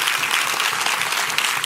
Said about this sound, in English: So why don't we real quick, they'll probably hear it more than they'll see it, but let's just give them a huge applause for just being faithful.